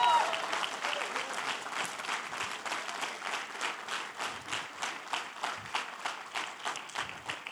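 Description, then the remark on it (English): An audience standing to give God a praise bursts into loud, dense applause, the scattered clapping gradually settling into a steady, rhythmic clap-along beat that carries through to the end. “If you'll stand up and clap, I'll quit.”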